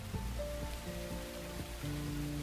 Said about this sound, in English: The only sound waiting for them outside was the sound of the rain splashing into puddles on the street. Nobody was outside. No cars were driving. It was completely silent. Only the rain.